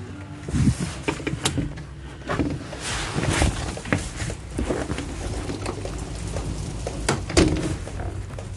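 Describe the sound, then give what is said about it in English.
Steady outdoor rain, a constant dense hiss broken by scattered sharper patters and thumps, with a low rumble underneath and no one talking. “Back into the rain.”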